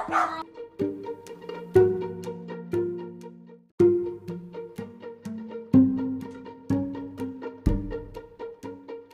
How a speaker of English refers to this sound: We're back because the UPS had to like pick up 60 boxes, and the dogs were all excited.